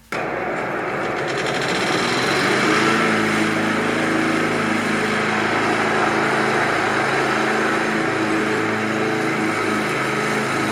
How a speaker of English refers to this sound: Ugh, it's a lawnmower. It is a lawnmower, and it depresses me.